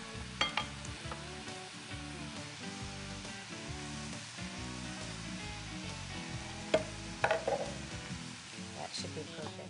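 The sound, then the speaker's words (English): Flours for pizza dough are stirred and blended together in a bowl before water is added, giving a steady dry scraping hiss with a few sharp clinks of a utensil, all over a constant musical background. “We're getting ready to add some water to this as well. I'm just kind of blending together our flours.”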